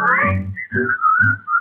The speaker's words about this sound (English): Whistle your blues and whistle your cares and whistle your troubles away. You will be in style if you pucker up your lips and keep a whistling all the while.